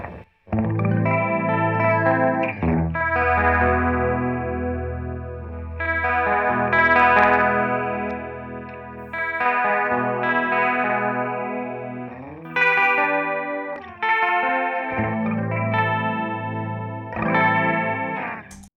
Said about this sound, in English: I love those little tails. I think they're it's kind of spacey. Woo, it is. It's almost like a space echoey kind of. Oh, wait a minute. Wait, I didn't say it. No. It's a digital chorus. It's a digital chorus. It says right there. It's interesting.